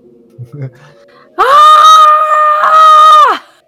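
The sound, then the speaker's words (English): A loud, sustained high-pitched vocal scream in an exaggerated anime style, holding one strained pitch for about two seconds before cutting off, preceded by a few soft murmurs. “I'm gonna anime scream while I do it.”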